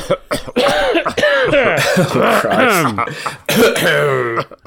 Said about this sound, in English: We probably shouldn't start the episode with a cough.